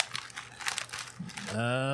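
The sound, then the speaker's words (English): Crinkly plastic of an Oreo cookie package being handled and closed, a quick run of irregular rustling bursts for about a second and a half before a man's voice begins speaking. “Are you getting into the Oreos again? I think he's trying to close them.”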